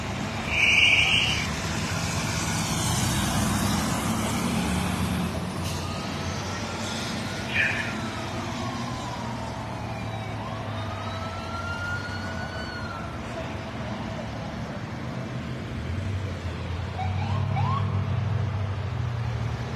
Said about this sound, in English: Now here comes the fire truck.